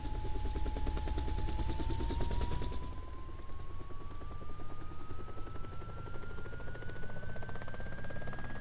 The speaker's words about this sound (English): Don't worry about the startup noise of the chopper. I'm guessing that's just a placeholder, but